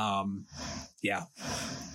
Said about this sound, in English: Cool. Oh, sorry, I just yawned. You did. Yawned on the air.